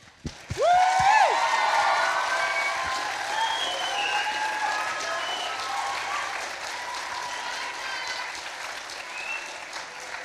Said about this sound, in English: waiting nervously in the wing is our Kapa Haka group. They're nervous for your reaction. So, can we give them the biggest round of applause that you've got in you, just to let them know that we're here to support them?